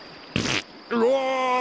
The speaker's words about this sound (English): Someone farting? That must be like an earthquake.